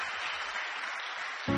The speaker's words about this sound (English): Continue clapping your hands